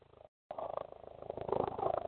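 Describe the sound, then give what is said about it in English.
An army helicopter flying overhead: its rotor thumps in a steady, fast rhythm, a low pulsing drone that cuts out briefly, then returns and swells louder toward the end. No one speaks. “Is that army is helicopter flying in the air? And you know that's an army helicopter because the regular helicopters ain't as powerful and as loud.”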